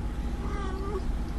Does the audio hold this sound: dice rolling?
no